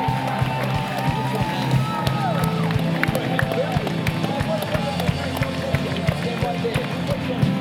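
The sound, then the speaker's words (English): A large audience breaks into sustained applause and cheering for people who raised their hands as they come forward, dense clapping mixed with whoops and crowd voices, loud and continuous throughout, with a bright chaotic texture of many hands at once. “Come on, let's give them a great round of applause.”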